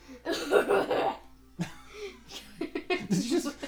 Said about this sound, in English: Was that you clearing your throat? Yes. It almost sounded like you were gonna throw up.